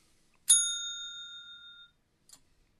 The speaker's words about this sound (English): I'm going to hit the bell so that we can talk spoilers.